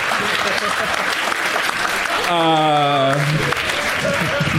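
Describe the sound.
Loud, steady audience applause for a joke fills the whole stretch, a dense wash of clapping, with one voice letting out a brief sustained whoop partway through.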